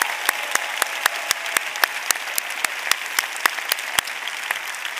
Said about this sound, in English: So we're going to just give you one more round of applause for thanks for serving our country.